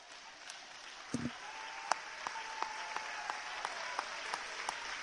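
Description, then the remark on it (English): A large audience claps their hands, a steady wash of applause with a few sharper claps standing out, sounding full and moderately loud with no speech over it. “If that's you, I want you to clap your hands.”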